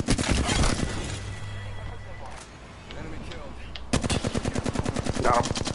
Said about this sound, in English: Oh, where was it? That was gunshots.